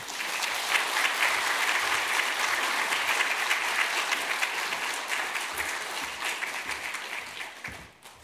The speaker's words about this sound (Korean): 앞으로 나오실 때 큰 박수로 환영하겠습니다.